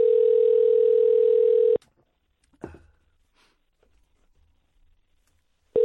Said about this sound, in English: You speak to NASA, mate. Yeah. Hang on, it's ringing.